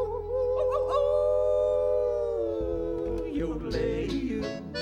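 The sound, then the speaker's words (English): A human voice lets out a long, drawn-out coyote-style howl that slides downward in pitch, loud, over steady country-style musical backing. “We're gonna hoot and holler and howl at the moon.”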